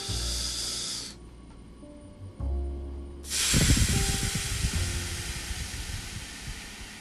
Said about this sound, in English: So take a few deep breaths with me.